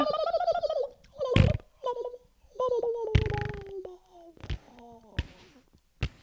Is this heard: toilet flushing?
no